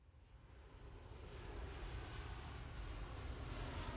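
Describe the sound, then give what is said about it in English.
A loud, steady roar of an airplane engine as a short-haul flight touches down at Pisa Airport in February 2014: a dense rumbling drone that swells slightly and holds, continuous with no voices. “As his plane touches down at Pisa Airport, Arthur Brand shifts uncomfortably in his seat.”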